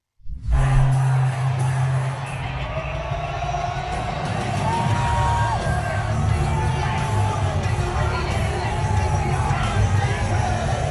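A large arena crowd at a UFC fight in Las Vegas cheers and roars continuously as Donald Trump walks in, a dense wall of shouting and whooping that swells steadily for the whole stretch, with no break in the noise.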